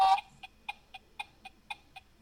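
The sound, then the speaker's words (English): A 15-second timer buzzer from the Blockbuster Movie Store board game, started by the first player to answer, begins with a short electronic burst, then ticks steadily at a quick, even pace, each tick a bright, tonal beep. No one speaks. “The first one to answer starts the buzzer, and you'll hear this.”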